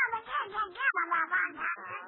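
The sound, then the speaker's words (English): Herman, a pet duck, quacks in a kitchen at breakfast time while bacon is cooking: a rapid, nasal, raspy stream of chattering calls that run together for about two seconds, fairly loud, with no other voices. “Now it's morning at the Burns home, and we find Gracie in the kitchen getting breakfast, while her little duck Herman looks on hungrily.”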